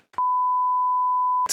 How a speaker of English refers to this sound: Actually, I'm beeping that. You guys probably can't even hear it.